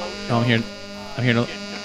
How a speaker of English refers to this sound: I'm hearing I'm definitely hearing something. I'm definitely hearing static.